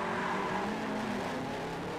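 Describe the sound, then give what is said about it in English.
A loud stunt car engine roars steadily for two seconds, mixed with a rough hiss that suggests tires skidding across pavement. No voices are heard. “Oh god, I love that car. It sounds so ridiculous.”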